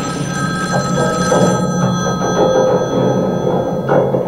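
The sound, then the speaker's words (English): A telephone rings steadily with a bright electronic bell tone, fairly loud, over a low murmur of background noise with no one speaking. “Your phone's ringing.”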